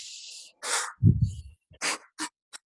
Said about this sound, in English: And they take that deep breath. If you notice, they don't do this. You know, they're not breathing through their nose like they're running a long distance race, right?